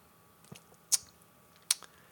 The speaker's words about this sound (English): I'm going to have another sip of beer, and then I'm going to tell you what I was working on, and then I'm going to get the heck out of here.